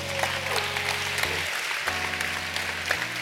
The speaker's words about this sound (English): Clap for Jesus.